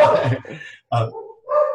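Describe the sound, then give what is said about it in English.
A dog vocalizes excitedly in three short bursts of high, whiny yips and yelps separated by brief pauses, fairly loud with no one talking over it. “and my dog's happy that I'm on there.”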